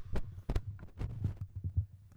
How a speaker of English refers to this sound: I think we're good again. That's right. Some weird static on the line there.